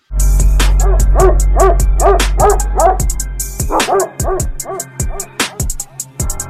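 A dog barks in a rapid series of sharp, loud yaps mixed with growling, pausing briefly before another burst of barks. No one speaks.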